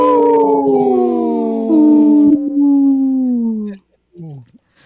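wolf howling

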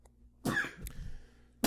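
sneeze

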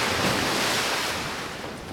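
water splashing

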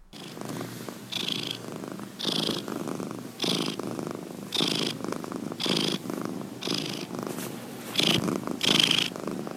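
cat purring

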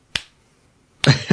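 slow clap

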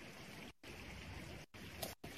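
river water flowing

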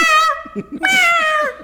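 cat meowing loudly

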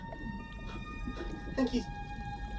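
whale call

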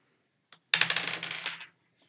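dice rolling

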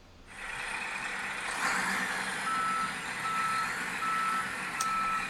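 garbage truck reversing beeps

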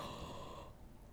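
a yawn

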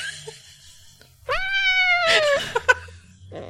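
cat meowing

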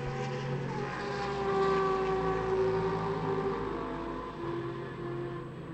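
race cars passing

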